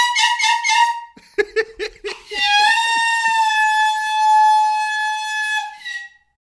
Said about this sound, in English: Oh, the dogs don't like it. Yeah, the dogs don't like the horn. They don't like that we're down here having fun.